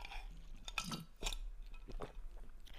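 Someone sips an electrolyte drink: a few quiet slurping and swallowing mouth sounds, with a light clink of a glass, and no talking.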